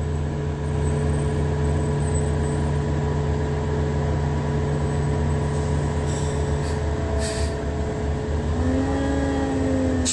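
A heavy City of Ontario dumpster truck's engine rumbles loudly, a steady droning growl with whining tones that shift in pitch toward the end as it moves past. No one speaks.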